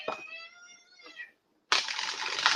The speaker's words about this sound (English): Think about your question while we shuffle, and I'll give you the cards.